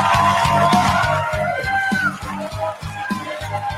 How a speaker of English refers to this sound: Nice reception there for Elon from the crowd.